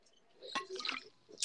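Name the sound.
drinking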